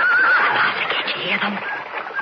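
A horse whinnies loudly, a shrill wavering cry that fades into rough breathy snorting over about two seconds, with no one talking.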